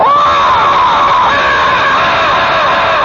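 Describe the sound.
A man imitates a brontosaurus roar like those in cheap Japanese late-night horror movies: one long, loud, strained bellow that wavers and slides in pitch, drenched in echo from an echo chamber, with no other talk.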